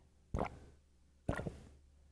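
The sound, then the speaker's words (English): Two wet, throaty gulps of someone swallowing a drink, spaced about a second apart, each a short, fairly loud plopping swallow with a quiet pause between and no talking. “I heard that. Those gulps.”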